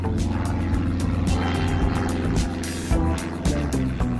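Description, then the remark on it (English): A tiny propeller plane's engine drones loudly and steadily, a dense low throbbing hum with a rhythmic buzz running throughout, heard on board during a flight from Heathrow Airport in London. “A few weeks ago, I got up well before sunrise, made my way to Heathrow Airport in London, and got on board a tiny propeller plane.”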